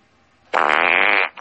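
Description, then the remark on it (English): A loud, buzzy raspberry blown with the lips imitates a fart, one sustained sputter of under a second with no talking over it, then a brief trailing puff. “Now, match 12, I'm going to talk about, but I want you to give me a fart noise.”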